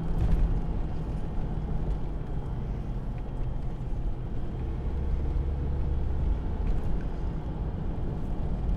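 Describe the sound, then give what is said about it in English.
A steady, low rumble of road traffic, with engine drone and tire noise blending into a continuous wash that stays fairly loud throughout, with no distinct gaps. “Sorry, I got a little traffic here.”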